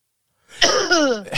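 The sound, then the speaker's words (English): A voice mimics a single exaggerated, rude cough of someone not covering their mouth, standing with hands on hips: a short, throaty burst that slides downward in pitch and ends in a breathy rasp, loud, after a brief silence. “They can only stand there with their hands on their hips and go.”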